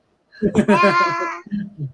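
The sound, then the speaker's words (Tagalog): A young child babbles, a drawn-out, high-pitched voiced sound followed by two short, lower syllables after a brief pause. “May bata.”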